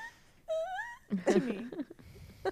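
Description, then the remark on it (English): A pet cat named Iggy, wanting attention, whines in a thin, rising, nasal tone lasting about half a second, followed by a rougher, lower stretch of murmuring vocal sound and a brief final squeak. “He's whining behind me.”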